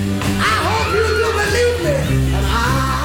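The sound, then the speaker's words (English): A live concert crowd, with women shrieking and cheering excitedly, high voices rising and falling amid overlapping party-like chatter, all loud and continuous over a steady low musical drone. “Then you hear some women screaming in the background, getting excited.”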